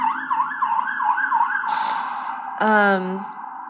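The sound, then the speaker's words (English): An emergency vehicle siren outside an apartment in New York City yelps in a fast rising-and-falling pattern, then shifts to a steady wail broken by a loud, blaring horn blast near the end, heard from outside at moderate volume. “Sorry if you hear the sirens.”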